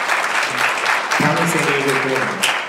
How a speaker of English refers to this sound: That deserves tremendous applause, because yeah.